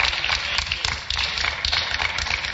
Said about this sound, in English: Those who didn't clap are jealous. Yes.